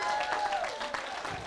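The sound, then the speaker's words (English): An audience applauds for Jesus steadily, a dense wash of many hands clapping at once with a few cheers and voices mixed in, holding at an even, moderately loud level throughout. “Come on, no golf clap for Jesus.”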